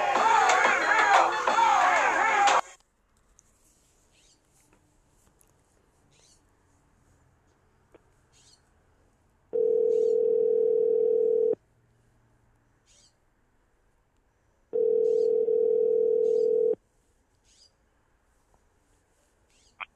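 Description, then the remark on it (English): A brief burst of noisy sound, then a phone line ringing while a call goes through to someone for an interview: two steady, mid-pitched buzzing tones, each about two seconds long, separated by a pause of silence. “We're going to try to hit that boy because we need an interview, man.”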